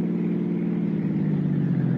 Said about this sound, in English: We cut out through Westwood, then Santa Monica, then hit the coast highway and headed north.